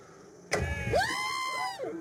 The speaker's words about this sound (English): I'm warning you, this next little bit, the very beginning is really loud, but it's a slow-motion video of me smashing this car.